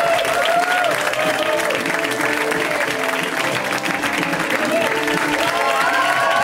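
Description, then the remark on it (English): Sustained audience applause at a comedy show welcoming comedian Brian Babylon, dense and steady clapping from a large crowd with some cheering and whoops mixed in, loud throughout the whole stretch. “I need the applause.”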